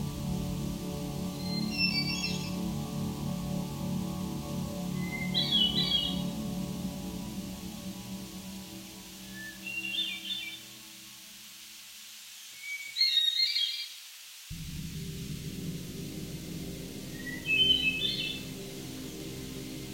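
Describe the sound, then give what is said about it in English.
A hermit thrush sings five separate phrases a few seconds apart, each opening on a clear held whistle and rising into fluttery, echoing notes, over a low steady background rumble that briefly drops away. “The hermit thrush is a forest songbird with a drab brown plumage and a well-known melancholy song.”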